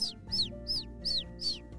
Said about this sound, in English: opened the window and the bird flew right inside.